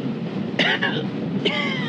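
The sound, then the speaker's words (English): A man coughs harshly in a short fit and cannot get his breath: two quick coughs close together, then a third after a brief pause, over a low background rumble. “Coughing his head off.”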